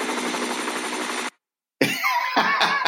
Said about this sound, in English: It's not me. That wasn't me. The helicopter? I'm increasing the production value of this show.